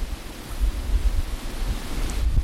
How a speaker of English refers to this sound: And as still as that water is, we've got roaring water behind us.